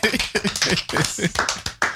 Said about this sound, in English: Let's clap it up, man. Let's go ahead and clap it up.